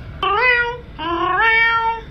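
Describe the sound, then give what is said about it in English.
A person doing an animal impression imitates a cat, letting out two drawn-out meows in a row, each rising and then sliding down in pitch, fairly loud with no other talking. “Do a cat.”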